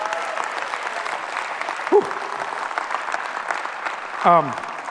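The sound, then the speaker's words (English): An audience at an evening church service claps steadily for five seconds in praise of Jesus, a dense, even wash of many hands, with a couple of brief rising-and-falling vocal whoops cutting through the applause. “Give Jesus one more hand clap.”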